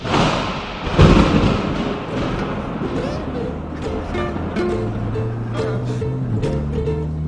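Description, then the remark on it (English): A deep, loud thunder boom hits early, then a low rumble rolls on underneath as sustained musical tones fade in toward the end. “No, we just sort of at some point we interrupt the banter with thunder.”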